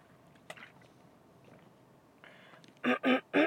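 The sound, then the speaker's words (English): Someone drinks water to clear their throat: a small click and faint rustle, then three loud, quick gulps in a row. No one speaks. “I'm going to drink some water to clear my throat.”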